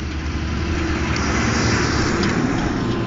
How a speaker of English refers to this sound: There's a garbage truck coming, so it's gonna be a little bit loud for a second. Unless I edit that out. I might not.